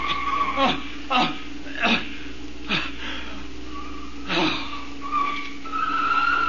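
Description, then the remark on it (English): Car tires screech in a rapid series of short, harsh squeals, fairly loud, ending in a longer sustained skid as the vehicle grinds to a halt. “Stop this car. Let me out. Let me out.”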